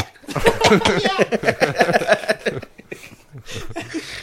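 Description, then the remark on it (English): A person imitates coughing, producing a run of rough, choppy vocal bursts followed by a few breathier hacks, with a hint of chuckling mixed in. “And with each bubble, you could hear the cough like...”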